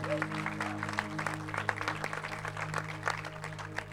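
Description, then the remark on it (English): An audience breaks into a steady round of applause for the guest experience team who greeted them on their way in, many hands clapping in a dense, continuous patter at a fairly even level for several seconds, over a low steady hum. “If you were greeted, high-fived, hugged, maybe even greeted with a holy kiss on your way in, will you just give a round of applause to that team that did that?”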